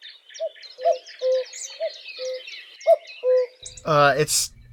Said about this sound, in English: Males are the ones that make the signature cuckoo sound that we all know and love.